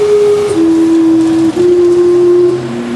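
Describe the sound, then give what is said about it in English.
The whistle of the Gastown steam clock blows a loud, steady low tone that steps slightly in pitch partway through and holds for about three seconds, with no voices present. “He's the guy who created the famous Gastown steam clock.”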